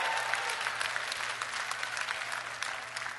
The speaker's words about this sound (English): Oh, somebody ought to give him a clap offering.